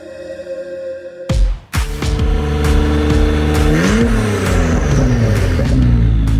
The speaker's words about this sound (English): Those car sounds from Josh Maldonado. That is a NSX at his tuning shop that he works at. He works on NSXs.